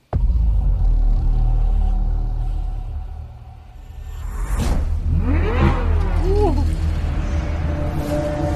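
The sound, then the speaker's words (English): A Corvette Z06 sports car engine idles with a deep, steady rumble, then a loud whoosh passes and the engine revs hard, its pitch sweeping up and down several times, loud. “Corvette Z06. They have like the car in camo, but let me play the. There's a teaser video for it, but I'm not.”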